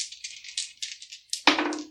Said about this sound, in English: So is everybody ready? Mm-hmm. Let's roll some dice.